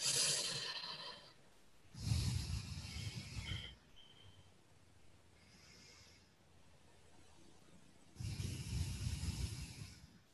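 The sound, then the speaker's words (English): Slow, deep breaths during meditation, two long airy rushes of air several seconds apart with quiet pauses between them and no talking. “So we place us all right in the center of that flame and just breathe it in for a minute.”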